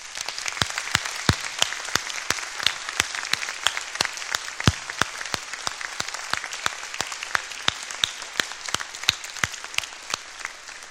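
A crowd breaks into steady applause for a group of kids who have stood up, many hands clapping at once in a dense, continuous patter with sharp individual claps standing out, holding at an even level for about eleven seconds with no talking.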